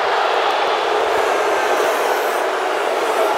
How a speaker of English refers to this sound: And you can hear the crowd. I don't blame the crowd at all.